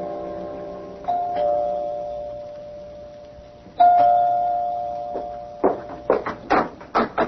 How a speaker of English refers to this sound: You can go to his apartment. You can ring the doorbell. One thing about doorbells, they don't give off busy signals.